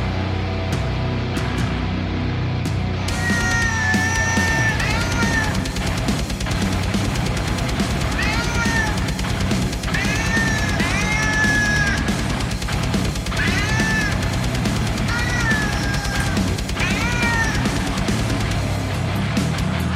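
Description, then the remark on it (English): A loud, dense heavy metal track with distorted guitars and pounding drums, where a cat's meows take the place of vocals, arriving in repeated rising-and-falling phrases over the music. “there's a metal band, and it was all, and all the vocals were done by a cat, which you will drop in right about here.”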